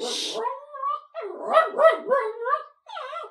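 A dog that was lying in bed gets up and barks in a quick string of short, high, yipping barks with a whiny edge, moderately loud, with brief pauses between the bursts.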